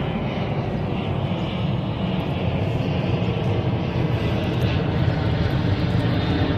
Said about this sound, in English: That maybe you're looking up in the sky and imagining that plane.